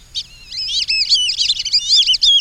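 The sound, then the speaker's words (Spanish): White-winged whistling ducks (pijijes alas blancas) call in a rapid, overlapping chorus of high, squeaky whistles, several birds at once with slurred rising and falling notes, fairly loud and continuous with no talking. “Unos pijijes alas blancas demuestran que en verdad son patos que saben silbar.”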